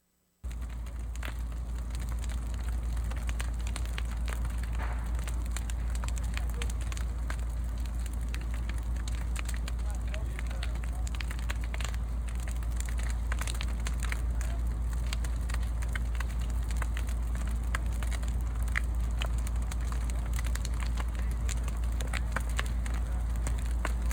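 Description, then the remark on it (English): A building fire roars steadily with a deep low rumble, peppered throughout by sharp, irregular crackles and pops; no voices are heard. “I want you to listen to the fire.”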